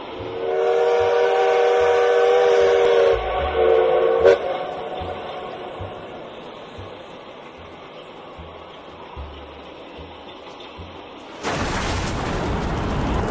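A munitions train rumbles steadily along the tracks with a long, tonal whistle blast at the start, the rolling clatter continuing before a broad burst of noise near the end.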